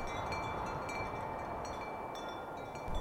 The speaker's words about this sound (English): What is the most beautiful sound? Probably the wind, like, rushing through the trees. I guess, like, the wind is pretty nice. Wind blowing.